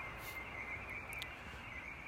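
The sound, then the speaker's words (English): Bird song: a thin, high, steady chirping that carries on throughout, with a brief brighter call partway through, over a quiet outdoor hush and no voices. “Listen to that bird song again.”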